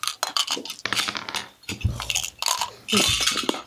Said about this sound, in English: The horrific sight triggers shrieks, screams, and general cries of astonishment, and now I need everyone to roll me a D6, which is a normal die.